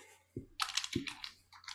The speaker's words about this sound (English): I was turning the page.